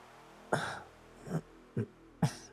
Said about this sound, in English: Yeah, the two of you hear a weak cough come from 160's bed.